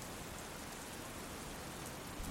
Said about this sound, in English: The dust is almost settled immediately by the rain, the amount of pouring rain.